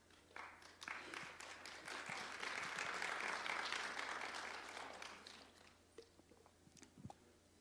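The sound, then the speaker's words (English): A crowd gives a soft, restrained round of applause, steady for several seconds before thinning out into a few scattered final claps. “I feel like the way we're clapping, we're at a golf tournament.”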